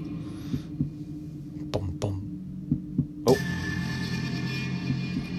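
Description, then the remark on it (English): A deep, slow heartbeat sound effect, presented as the demon Finn Balor's heartbeat, thuds in paired lub-dub pulses over a low droning hum, then a loud hissing wash of noise swells in and continues under the beats. “That is the demon Finn Balor's heartbeat.”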